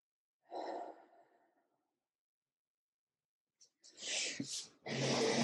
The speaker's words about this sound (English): So what you're gonna do is you're gonna breathe in into your belly. So make sure it's not high up in your chest, but in your belly, and you breathe in and you watch your belly expand, and then slowly breathe out. And then watch it contract.